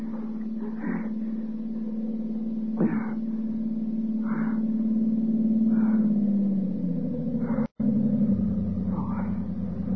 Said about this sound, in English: Look, light. The car's coming. Help's coming.